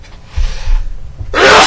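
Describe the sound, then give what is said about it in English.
A single loud sneeze: a breathy inhale builds up, then a sharp, forceful burst of air cuts through at the end, with no talking around it. “Bless you. Excuse me.”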